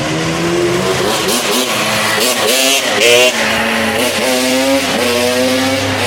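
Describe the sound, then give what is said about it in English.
A loud, buzzy small engine revs and shifts pitch repeatedly as an ATV drives by on a street in New Jersey, its whine rising and falling over about six seconds. “Did you hear that? Motor said that was an ATV being driven on the streets of New Jersey, which they're not supposed to be.”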